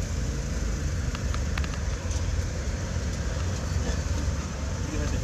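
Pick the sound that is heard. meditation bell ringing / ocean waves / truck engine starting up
truck engine starting up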